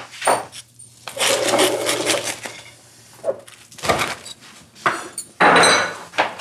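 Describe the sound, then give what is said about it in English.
Crunching from biting into a crusty Cuban sandwich: several loud, crackly bursts of crisp chewing come in irregular bunches, with short pauses between bites and no talking. “This is a legit Cuban sandwich with the crunch.”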